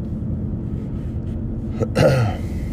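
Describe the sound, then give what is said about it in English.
A single short, harsh cough bursts out about two-thirds of the way in, rough and throaty like someone clearing their throat, over a low background hum. “Should just go through the whole podcast and just call out how many times we cough in the podcast.”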